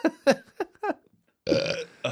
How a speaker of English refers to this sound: You had a legit burp in there too, which was great. Yeah, he did. Yes, he did.